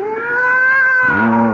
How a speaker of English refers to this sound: I'd forgotten that mewing, spewing cat.